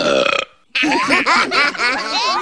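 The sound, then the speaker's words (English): A loud, drawn-out belch, a brief burst followed by a short gap and then a long, rumbling, wavering burp that carries on for nearly two seconds. “Well, I won the belching contest at work.”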